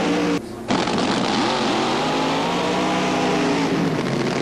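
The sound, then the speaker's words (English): A drag racing car's engine roars loudly and continuously, its harmonic drone rising and falling in pitch as it revs, with a brief gap near the start; Pat Dakin's Donovan-powered car wins by a car length in 6.06 seconds at 236 miles an hour. “Grant Stoms appears to have a brief lead off the starting line, but Pat Dakin with a car length victory at the finish, a fine 6.06 second elapsed time, his speed 236 miles an hour.”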